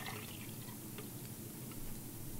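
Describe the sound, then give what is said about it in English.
Beer streams from a tapped keg into a pitcher in a steady, foamy hiss that runs unbroken for a couple of seconds, fairly faint, with no voices over it. “Oh, that's a major league pour right there.”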